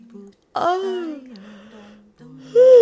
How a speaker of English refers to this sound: Let's start right off with a good yawn stretch.